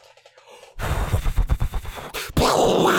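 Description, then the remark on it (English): A voice performs a comedic impression of a helicopter flying through a thunderstorm: a loud, rapid low thudding like rotor blades, then a sudden breathy roar like a thunderclap or rushing wind. “what would it sound like if a helicopter was flying through a thunderstorm?”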